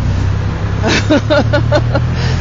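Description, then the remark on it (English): Dense road traffic at a busy junction in Vauxhall, heard while riding a brand new motorbike: a steady low engine rumble and wind-blasted roar, with a brief muffled voice partway through. “First few moments on the bike, I'm riding through Vauxhall, which is the most nightmarish junction.”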